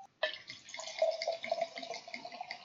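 Red Merlot wine pours steadily into a glass, a continuous gurgling stream that starts abruptly and keeps splashing for a couple of seconds with no voices.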